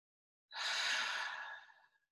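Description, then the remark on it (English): A single long, deep breath taken during a guided meditation, a soft breathy rush lasting about a second and a half that fades out gently, with no talking. “And so it is, breathing deeply.”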